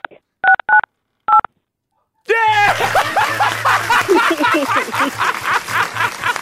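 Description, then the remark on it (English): Three short phone keypad beeps, two quick then one after a pause, played by a caller on a radio show, sound out a snippet of a tune before loud, bursting laughter takes over and continues to the end. “Yeah, you didn't just sing, you played.”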